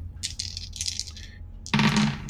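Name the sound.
dice being rolled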